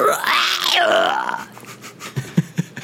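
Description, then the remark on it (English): A person imitates the roar of a Wampa, a panther-like creature: one long, strained vocal growl that rises and falls in pitch for over a second, followed by a few soft, irregular thumps. “What does it sound like? What do they roar like?”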